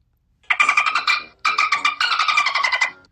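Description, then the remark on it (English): A car engine revs in three close bursts, a buzzy, pulsing whine that rises and holds, loud, with brief gaps between runs and no talking, heard from inside the car, outdoors. “I am in a car, would you believe it?”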